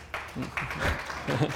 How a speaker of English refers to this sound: Pre-prayer clap. Let's do it.